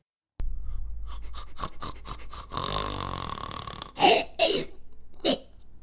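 Loud, raspy snoring from someone sleeping under a coffee table, starting with a series of short rattling breaths and building to several heavy, harsh snorts near the end, with no talking.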